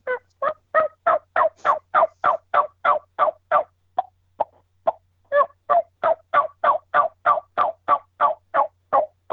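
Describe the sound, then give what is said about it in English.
A person imitates a wild turkey with their natural voice rather than a latex call, giving a long steady run of loud, rhythmic yelps, broken briefly in the middle by a few quieter, sharper clucks, then resuming the yelping. “So there's a decent run of what I can do yelping and doing some clucking.”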